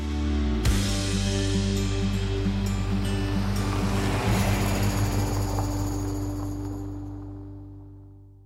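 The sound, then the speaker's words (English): Beach ambience at Bagara Beach, a coastal suburb east of Bundaberg, with a steady wash of ocean waves, joined by a low droning hum beneath, that slowly fades away toward the end. “Here at Bagara Beach,”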